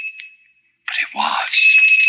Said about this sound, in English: The doorbell. Oh, it couldn't be at this hour. It couldn't be, but...